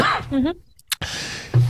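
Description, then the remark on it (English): Someone clears their throat in a short, rough burst after a brief pause, preceded by a few murmured vocal sounds. “So, excuse me, I'm going to clear my throat.”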